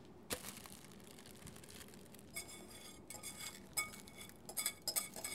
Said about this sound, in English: And now I am pouring the melted chocolate mixture into the prepared loaf pan.